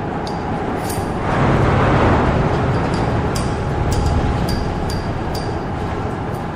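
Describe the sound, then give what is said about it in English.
A ship's engine roars through the night, heard from a tiny cabin next to the engine room, in a dense, continuous rumble that swells louder after the first second and then holds steady, with faint metallic ticks and rattles scattered above it. “The ship roars through the night.”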